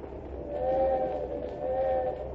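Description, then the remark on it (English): A train rumbles steadily along near Poughkeepsie while two sustained whistle blasts sound in succession over the low, continuous clatter, moderately loud, with no voices. “Well, I guess we'll have to tune in on the train again.”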